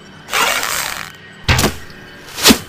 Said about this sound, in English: Gomura-san, would you be so good as to fire an arrow at that nearest ship? Please.